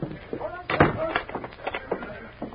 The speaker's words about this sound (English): I'll lock the door.